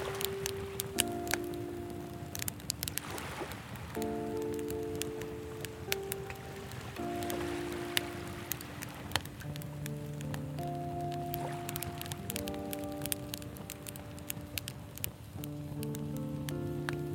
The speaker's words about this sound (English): The sound of the sea and the bonfire hissing and crackling are calming.